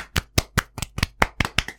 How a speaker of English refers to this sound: So, round of applause for the clapper rail.